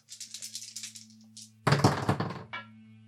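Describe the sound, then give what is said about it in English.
Two dice rattle in quick, light clicks for about a second and a half, then clatter loudly onto a table, tumbling briefly before a last small tap, over a steady low hum. “Since this is important for us to do, I'm going to use a dice from Attitude and a die from Turbo.”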